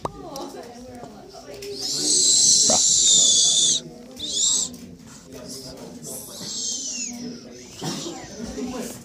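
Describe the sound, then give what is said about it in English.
A person whistles a long, shrill, high-pitched note, then a short burst and a later note that slides downward. Faint low voices murmur underneath. “Don't whistle at me.”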